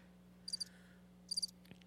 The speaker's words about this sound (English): It was a cricket noise.